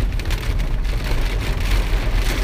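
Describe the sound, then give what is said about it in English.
A steady rain shower pours down in a dense, continuous hiss, with a low rumbling undertone and scattered drop patter throughout. No voices, just the constant wash of rain. “Oh, rain shower.”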